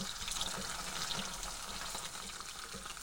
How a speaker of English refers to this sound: As you can hear now, the potatoes are frying nicely. So we've basically covered the bottom layer of the pan there with the potatoes. We're not overstacking it. We're going to do them in parts. Just keep stirring them around.